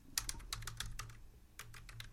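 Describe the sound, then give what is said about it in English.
Rapid typing on a computer keyboard as someone types a web search, a quick run of crisp key clicks with a brief pause midway before a second burst, fairly quiet, with no voices. “Okay, you hear me typing.”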